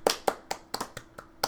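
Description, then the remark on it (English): A single person does a slow clap, clapping their hands in a steady, evenly spaced rhythm, about seven sharp claps in quick succession with no talking. “Stop with your slow clap.”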